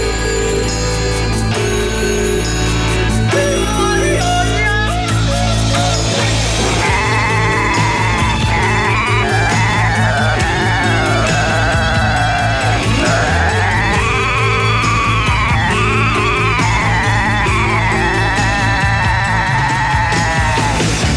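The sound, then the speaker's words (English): Goats bleat again and again in loud, wavering cries, layered over a busy musical backing with a steady beat that carries on throughout, with no talking. “Those goats, they need a break.”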